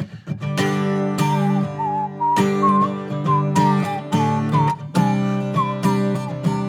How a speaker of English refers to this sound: But I'm going to try to whistle as we sing this song in the intro parts, just to kind of have a fun little new twist to worship, right?